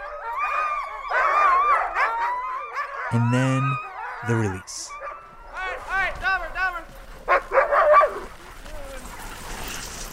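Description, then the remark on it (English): A chaotic chorus of excited sled dogs barking, yelping and howling all at once before a training run, loud, as they are hooked up to the guy line, leaping in the air and banging on their harnesses, with a man briefly speaking over the clamor. “The dogs get so excited before their runs. They're hooked up to the guy line, leaping in the air, banging on their harness.”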